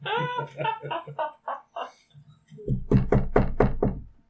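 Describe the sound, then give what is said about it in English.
A voice is heard briefly, then a man knocks on a door about five times, the loud knocks landing in a quick, steady rhythm. “He's knocking.”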